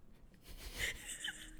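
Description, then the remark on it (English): A slow, deep breath drawn in and let out during a breathing exercise, an airy, hissing rush of air that swells and fades. Quiet, with no talking. “I just need to do some breathing exercises real quick.”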